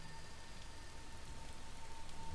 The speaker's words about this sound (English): So, this is like an old cobblestone path, and it's now under a torrential downpour?